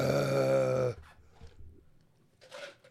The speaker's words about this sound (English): Damn, that's serious. I'm releasing one deep, bellowing burp.